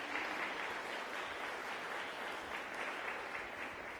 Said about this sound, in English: She is helping us with our process this year, and if you'll please tell her thank you with your applause.